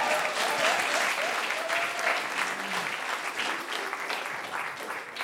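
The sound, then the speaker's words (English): A crowd claps in a sustained round of applause after the film Beavis and Butt-Head Do America is named, dense and steady for several seconds with a faint murmur of voices underneath. “Is that going to become a feature in the podcast if you say, do a round of applause?”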